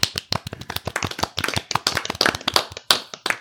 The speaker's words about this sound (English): A round of applause for everyone involved.